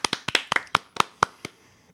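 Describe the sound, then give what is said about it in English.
A single pair of hands claps about nine times in a quick, steady, sharp rhythm, ending after a couple of seconds. No voices. “Applause. Applause.”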